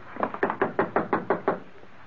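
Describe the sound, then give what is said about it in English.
A series of seven quick, evenly spaced knocks on a door, fairly loud, with no voices in between. “Then I'll do the knocking.”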